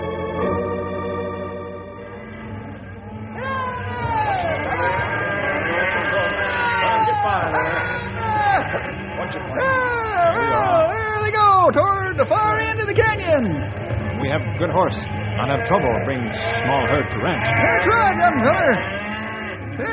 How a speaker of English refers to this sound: Those cattle Gray Wolf and Stumpy are bringing in.